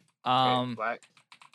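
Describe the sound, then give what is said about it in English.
A sustained voiced groan, then several light, irregular plastic clicks and clatters as a keyboard is picked up, handled and replugged into a gaming computer. “I also wanted to replug in my keyboard to my gaming computer that my girlfriend unplugged when she was working from here.”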